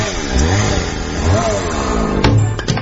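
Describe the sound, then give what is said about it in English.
A loud chainsaw engine revs for a few seconds, its buzzing pitch climbing and dipping in waves, with sharper bursts of throttle near the end. “Anyone seen my chainsaw?”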